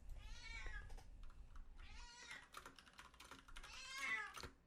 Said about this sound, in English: Podcat is here to say hi. Meow.